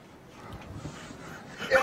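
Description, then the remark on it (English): Heavy, rapid panting in quick rhythmic breaths, dog-like and fairly steady, ending in a slightly louder burst with a brief thin whine. “He's panting.”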